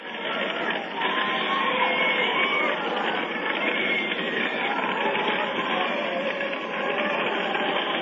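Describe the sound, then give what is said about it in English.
A dense, steady wash of many voices screaming and wailing together in a rock band's recording depicting Hell, band-limited and unbroken for the whole stretch, with a few higher cries briefly rising out of the roar. “Yeah, I hear screaming.”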